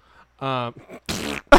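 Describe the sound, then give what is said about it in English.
A quick sequence of fart sounds, loud: a sustained buzzy, tonal one first, then two harsher, sputtering bursts right after. “That's where the fart sounds on Spotify.”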